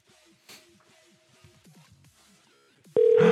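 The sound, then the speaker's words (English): An outgoing phone call rings: after a few soft, scattered electronic tones, a loud, steady ringback tone suddenly starts and holds clear, with no one speaking. “I hope to fuck they pick up now.”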